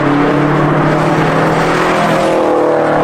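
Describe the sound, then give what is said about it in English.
A car engine roars steadily at high revs, loud, its harmonic whine holding strong as the car speeds through Zion National Park, with no voices. “speeding through Zion National Park. B, polluting Zion National Park.”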